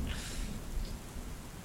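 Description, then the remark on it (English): Steady rain hisses throughout, with a low, rolling rumble of thunder underneath. The storm sounds fairly quiet and continuous, with no voices. “The sound of rain and thunder is really all you can hear.”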